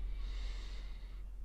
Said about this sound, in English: I'm breathing in. Yeah. And I'm breathing out.